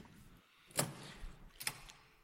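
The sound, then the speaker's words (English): A door opens as guests come in, with two sharp clicks or clunks a moment apart and no one talking. The sounds are fairly soft. “They're walking into a door. They're really Kramering it. Get the door!”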